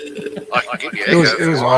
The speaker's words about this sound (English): That's echo. Jesus. His lips ain't moving. It's because you're in the cinema, mate. You're getting echo in the cinema.